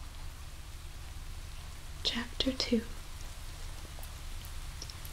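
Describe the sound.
Steady, soft rain patters and hisses throughout, an even wash of noise, while a voice briefly whispers a couple of words in the middle.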